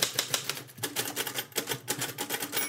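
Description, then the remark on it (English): Typewriter keys struck with a hammering action at Typewronger, a small independent bookshop on Leith Walk in Edinburgh, in a quick, uneven run of sharp mechanical clacks, roughly a dozen hits with brief pauses between bursts, fairly loud with no talking. “But if you type like hammering actions, that will have a grater, but you also hear.”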